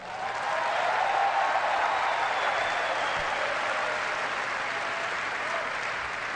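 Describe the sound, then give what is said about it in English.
Steady, sustained applause from an audience at a speech honoring the Romney family's legacy of public service, a dense wash of clapping that swells in quickly and holds at an even, loud level throughout with no voices standing out. “And that is a legacy that we honor and applaud tonight.”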